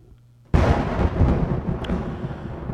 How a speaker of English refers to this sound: Oh, yeah, thunder.